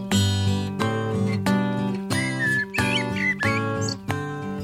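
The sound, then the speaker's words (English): A blackbird's warbling song, taken from a sound effects recording, trills in short, twisting phrases over steady, evenly spaced acoustic guitar chords, the bird fairly clear but sitting under the louder instrumental music. “Nobody is recording bird songs there. And that's not what happened at all. It came out of the sound effects cupboard.”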